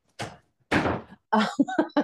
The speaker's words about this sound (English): Shut the door. Shut the door.